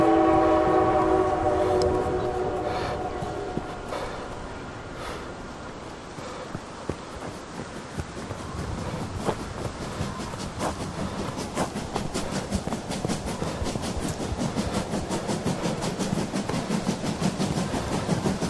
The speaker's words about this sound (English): All my pumpkins are smashing on the street from that racket! The hell? Are they visitors? Someone got a train working? If so, that's a game-changer.